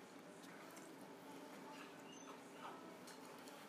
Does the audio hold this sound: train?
no